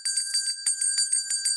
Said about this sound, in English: It's been a while since I heard the bell. Last call.